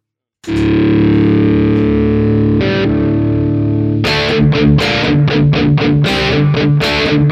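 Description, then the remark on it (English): A heavily distorted electric guitar opens with a long sustained chord, then launches into a punchy riff of sharp, rhythmic chord stabs, loud, with no voices. “I like the riff. I think it's a good riff. So I guess I could just play it.”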